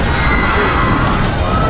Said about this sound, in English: Two massive explosions detonated on the left wing, sending the plane careening to its port side. Passengers screamed as the plane fell into a violent dive.